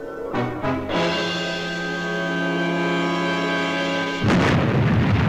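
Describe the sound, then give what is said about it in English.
A master robot console on a robot freighter, on fire, blows up: a few stuttering electronic blips give way to a steady buzzing hum, which breaks off into a loud, noisy explosive burst at the end. No voices. “And it went kablooey.”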